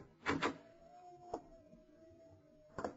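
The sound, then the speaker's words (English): A door handle rattles with a couple of quick clunks, then a door creaks open with a long, thin squeal before a final knock, with no voices. “Try the door, Lamont.”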